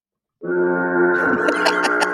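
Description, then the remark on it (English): A single deep, blaring foghorn blast starts abruptly and holds steady and loud for nearly two seconds, its buzzy drone gaining a rough, rattling edge toward the end. “I had to press the foghorn.”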